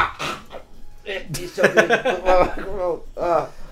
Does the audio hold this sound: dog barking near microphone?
yes